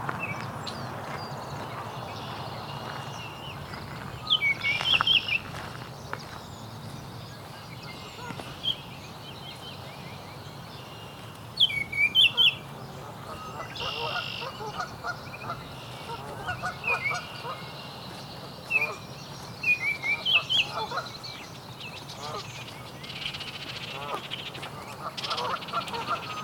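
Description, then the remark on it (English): A song sparrow sings several brief, bright phrases of trills and chips, repeated at intervals over a steady background with lower honking calls mixed in. “Song sparrow.”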